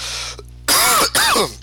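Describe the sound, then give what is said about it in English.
Two harsh, wet, loud coughs in quick succession from a person who is sick and can't stop coughing, with no talking around them. “I am sick as shit. I can't stop coughing, so I'm just gonna fucking get into the next set of music here.”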